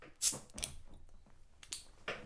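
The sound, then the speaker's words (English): A sharp metallic snap of the tab of a can of Elysian beer brewed with blood orange being pulled, followed by a brief hiss and a few softer clicks and rustles, with no one speaking. “So, why don't you do us the honors and crack that open?”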